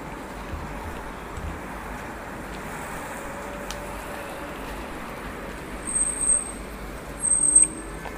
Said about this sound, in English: Like, you can hear the sound of the traffic going past